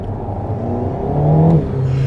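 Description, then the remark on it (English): A four-cylinder sports car engine with a short exhaust pipe drones and revs, its low harmonic tone rising in pitch and loudness before settling again, with no voices present. “It's definitely a sporting four sound.”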